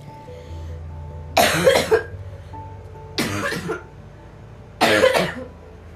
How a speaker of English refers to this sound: I apologize for coughing.